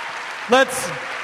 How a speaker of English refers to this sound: Huge round of applause.